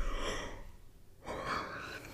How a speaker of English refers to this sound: I'm yawning.